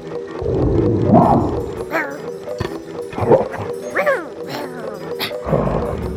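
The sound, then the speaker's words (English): Several bear-sized, dog-like monster creatures bark and bay with deep, growling voices, calls overlapping in rough bursts over a low rumbling background, loud throughout. “Do you hear them? There is bite with that bark.”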